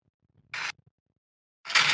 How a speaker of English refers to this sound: Printer. No. More precise. Copying? Photocopying? Yes.